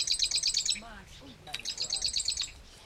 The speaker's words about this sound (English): It's a small bird, only about the size of a chickadee. Oh, hear that bird. I've never seen a marsh wren, but I can hear it. Chip, chip, chip, chip, chip, chip. Chip, chip, chip, chip, chip.